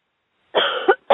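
A woman's deep, forced cough rasps out, then a shorter second cough follows a moment later, with no talking, as she is told to cough out spirits during a deliverance prayer.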